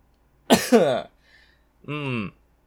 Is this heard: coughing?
yes